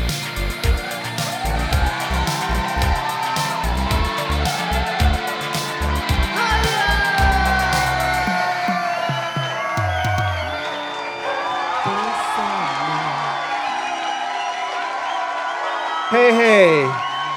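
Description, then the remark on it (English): A loud crowd cheers and whoops in a sustained roar, heavy rhythmic thumps pounding beneath it for the first half, with shrill rising whistles or yells near the end. “That crowd just got me really pumped up, actually.”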